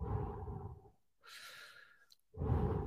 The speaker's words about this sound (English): I am breathing heavily now.